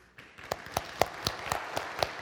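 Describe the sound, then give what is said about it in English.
A church audience breaks into applause, a dense patter of many hands, with sharper claps landing in a steady, even rhythm on top. No voices are heard. “I think we can clap. Can we clap?”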